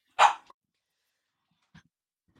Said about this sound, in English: Sorry about Gabs. She was just sitting there, you know, barking along.